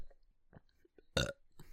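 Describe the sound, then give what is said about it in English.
A loud burp lasting a fraction of a second, with a few quieter throaty bursts and mouth sounds around it. “Welcome to the Burp Only Podcast.”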